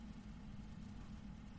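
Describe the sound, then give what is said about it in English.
The engine of the Inter-Europol team's LMP2 race car, an Aurica, drones at a steady low idle, a continuous rumbling hum with no revving or breaks, with no voices. “The Inter-Europol P2 car is, it sounds terrible, but it looks brilliant.”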